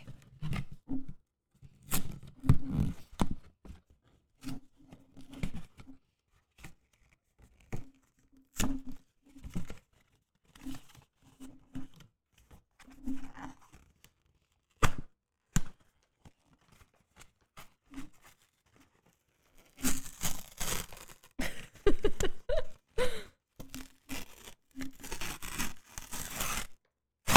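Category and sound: household object, paper being torn up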